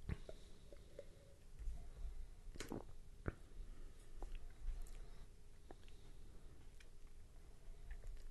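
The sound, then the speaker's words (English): Someone takes a quiet sip of a highly carbonated, spiced Belgian-style Unibrew beer (5.5%, from a 750 ml bottle), with a few soft wet slurps, swallowing and small mouth clicks scattered over a low background hum, and no talking. “I'm going to have to take another sip here.”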